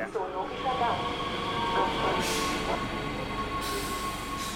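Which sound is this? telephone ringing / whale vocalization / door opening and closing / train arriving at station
train arriving at station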